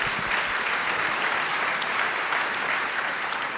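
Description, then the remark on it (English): A crowd breaks into steady, sustained applause for better toilets, after a call for a statewide code requiring septic systems to be inspected and pumped out. Many hands clap together in a dense, even roar that holds for several seconds without letting up. “It's probably the only place in America where you get applause for better toilets, huh?”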